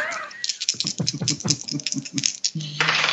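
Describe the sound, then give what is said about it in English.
Dice rattle and clatter across a hard tabletop in a quick, uneven burst of sharp clicks lasting a couple of seconds before coming to rest. “Let me try another dice.”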